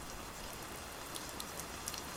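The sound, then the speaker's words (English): A rain effect cued during a film take: steady rain hisses continuously across the whole stretch, with a few brighter drops pattering on a surface now and then. It stays fairly quiet and even, with no voices. “And cue rain.”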